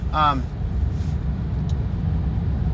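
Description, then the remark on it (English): Steady low rumble of car traffic on a road, continuous, with a brief vocal sound near the start. “Oh my gosh, let's go. Come on, car.”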